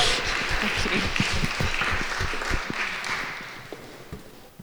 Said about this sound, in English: We can give you an applause as well.